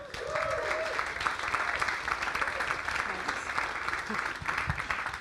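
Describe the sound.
A crowd breaks into sustained applause for a man invited up by the speaker, a dense, steady wash of clapping that holds at an even level for several seconds, with faint voices mixed underneath.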